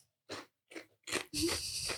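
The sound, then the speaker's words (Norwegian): Close-up crunching of chips being chewed right against the microphone: three separate crisp bites, then a louder, continuous crackling chew that fills the rest of the moment. “Det er lov til å tygge litt chips inn i mikrofonen.”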